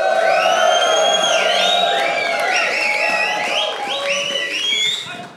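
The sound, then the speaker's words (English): A live audience screams loudly and cheers continuously, with many overlapping high-pitched shrieks and whoops rising and falling over a dense roar of voices, tapering off at the very end. “And so this will be for a live podcast recording. So scream loud and let's hear it.”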